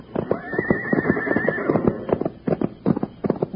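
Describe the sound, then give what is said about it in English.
A horse named Joker whinnies with a high, wavering neigh over rapid, rhythmic hoofbeats as it gallops, pounding steadily through the whole stretch, loud and with no voices. “Runs like the wind. He's leading us right back to the place I left Bill.”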